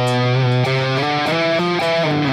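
Heavily distorted electric guitar, played through a Helix unit with a boost setting that adds more distortion, plays a loud, sustained riff of about five held notes shifting in pitch, thick and saturated, with no voices over it.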